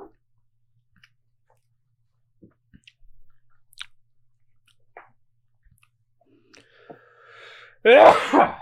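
A single loud sneeze, brought on by tasting a smoky whiskey, bursts out near the end, preceded by a few quiet clicks and a faint drawn-in breath in otherwise near silence.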